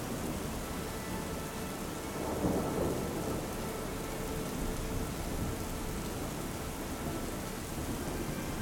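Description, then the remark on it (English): Steady rain hisses throughout while low thunder rumbles, swelling briefly near the start before settling back into a continuous, enveloping storm with no voices present. “As you enter the walls of the tower, you find you are protected from the rain here within.”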